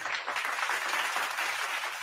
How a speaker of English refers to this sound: You come with the applause and the kick-ass intro. That's awesome, man.